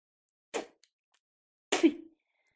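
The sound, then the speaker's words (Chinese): Two wet spitting sounds against silence, the spit used as lubricant: a short, sharp first spit, then a longer, sputtering one with a slight throaty buzz. No one speaks. “这点口水就当是主人赏你的，臭母狗。”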